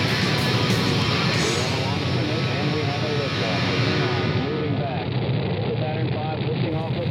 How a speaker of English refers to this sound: We have ignition sequence start. The engine is now building up to 7.7 million pounds of thrust.